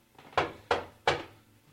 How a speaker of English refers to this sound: More insistent knocking.